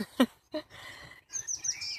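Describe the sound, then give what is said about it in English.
Birds sing softly outdoors on a windy day: a couple of sharp chirps at first, then a run of high, thin whistled notes, with a faint background hush and no talking. “And the birds, their song is the strongest sound at the minute.”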